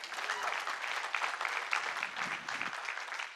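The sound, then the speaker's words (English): An audience at a church service claps for the Lord in steady, dense applause, a continuous crackle of many hands that holds its level for a few seconds without any talking. “Yeah, give the Lord a clap.”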